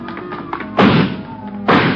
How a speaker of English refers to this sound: Come on, he broke through the garage doors.